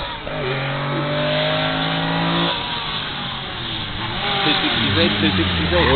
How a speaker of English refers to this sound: Yes, it's interesting watching the cars come down here, and a lot of them push a little, and then they grab and get round the corner.